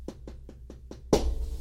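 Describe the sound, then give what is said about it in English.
Five quick, evenly spaced knocks on a door, followed by a heavier, louder bang that rings out briefly, with no voices. “What you bad knocking at my door?”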